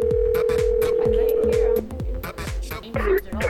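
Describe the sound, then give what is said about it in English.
A steady telephone tone hums for almost two seconds over a thumping rhythmic beat as a phone call is placed, then cuts off as the beat keeps going with brief clicks and bleeps. “Let's make a phone call.”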